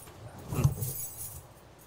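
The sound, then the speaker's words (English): A brief jingle of keys being handed over, a bright metallic clinking that peaks once and fades over about a second, moderately quiet. “Where are the keys? Here. You need the keys? Here you go.”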